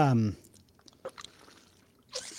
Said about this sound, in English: Take a little sip of water here.